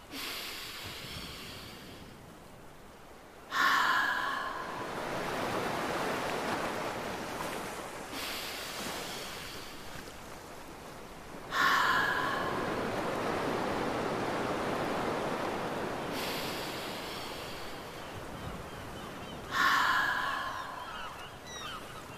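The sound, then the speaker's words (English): Three long breaths whoosh in slow, even swells, each rising sharply then fading over several seconds. A person breathes in through the nose and lets the air out through an open mouth, imitating the rush of ocean waves, with no talking. “Make a sound like the ocean.”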